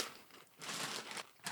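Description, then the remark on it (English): A bag of Doritos Dynamita Chili Limon chips crinkles and rustles in a bright, crackly burst, swelling louder through the middle before a brief dip and one more sharp crinkle at the end, with no talking. “In my hand are Doritos Dynamita Chili Limon.”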